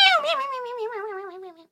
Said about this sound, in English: No. Not at all. She started meowling and spitting and scritching and scratching. And poor Jack was struggling to keep the cat on his head.